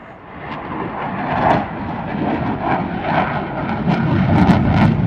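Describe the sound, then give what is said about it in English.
A broad, rumbling roar of military planes and helicopters flying low overhead fills the air, steady and fairly loud, swelling slightly toward the end with no voices present. “Give you a sense of what it might be to live in a war zone, and I'm amazed by the agility and the power of some of the military planes and helicopters that we've seen buzzing about.”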